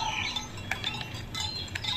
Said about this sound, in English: It simply smells fresh and relaxing, except for the baaing sheep and clacking of the bells around the necks of the cattle.